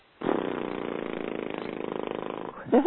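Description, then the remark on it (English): A person blows a steady, buzzing horse-lips trill as a practice exercise, lips flapping rapidly for about two seconds at a fairly loud, even level, then ends with a brief voiced sound that slides upward in pitch. “they want to be ready to commit to practicing a little bit every day, maybe 5 minutes of what one of the exercises is, simply horse lips.”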